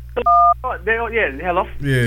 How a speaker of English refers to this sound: Don't worry about the phone beeping.